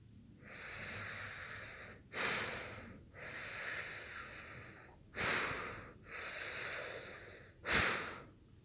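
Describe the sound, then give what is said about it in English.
Someone imitates a father's quiet sleep breathing by cupping hands over the mouth and blowing gently: three slow, airy breath cycles, each a long hushed exhale followed by a shorter, sharper puff, gentle with no talking. “I can make that sound by cupping my hands over my mouth and blowing gently.”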